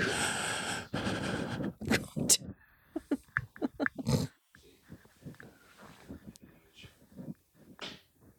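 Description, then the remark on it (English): Loud, heavy breathing right up against the microphone: a couple of long, rough exhales, then shorter snorting, wheezy puffs and murmured vocal sounds in an uneven rhythm. “Well, I keep the mic close to my face. Breathing heavy because it's a heavy moment.”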